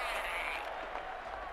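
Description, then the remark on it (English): A dense, steady roar of many voices, a crowd cheering deafeningly together, sustained without a break for a moment. “The crowd cheers deafeningly.”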